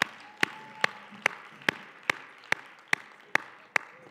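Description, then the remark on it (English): A church audience claps for children as they make their way to kids' ministry, a steady, even rhythm of about ten sharp claps over a soft continuous crowd murmur, with no one speaking. “Let's just keep clapping for them. Come on, let's clap for our kids.”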